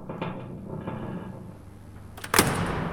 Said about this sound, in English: So she turned the crank on the pressure door and opened up to the inside.